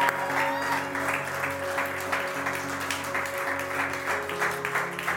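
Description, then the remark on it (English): A large crowd claps their hands steadily and continuously in praise during a sermon, a dense wash of many hands at once, with a sustained keyboard chord humming underneath throughout. “Clapping hands.”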